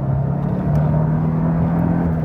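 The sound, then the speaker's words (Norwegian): A car engine roars steadily under heavy throttle, a loud, low droning hum with strong tonal harmonics that hold and edge slightly upward across the couple of seconds, with no voices. “Det full gass.”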